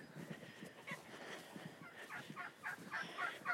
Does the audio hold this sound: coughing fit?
no